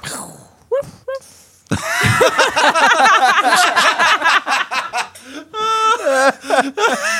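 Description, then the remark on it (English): A female voice imitates a firework, a short whistle leading into a long crackling, bursting stretch, then shifts into a rising, wavering wolf howl held for a couple of seconds. “She gave a firework sound and then a wolf sound.”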